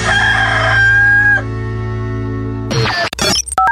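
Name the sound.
rooster crowing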